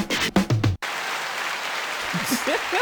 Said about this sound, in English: Some applause. Some abruptly ending applause.